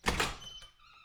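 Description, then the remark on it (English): A door is unlocked with a key and opened: a couple of sharp metallic clacks from the lock, then a brief thin squeak as it swings, with no voices. “Are you going to break down her door? No, I have a key.”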